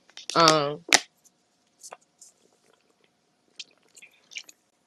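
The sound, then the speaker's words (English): A short voiced sigh, then a sharp wet click and scattered soft mouth and swallowing noises, like someone sipping and drinking water. “This water is good.”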